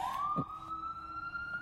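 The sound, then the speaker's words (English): Fire truck sirens wail as the trucks go down the street, a steady tone slowly climbing in pitch and holding strong, heard outdoors with no one talking. “Sorry, I'm outside of my car recording this with squirrels looking at me and the fire trucks going down the street.”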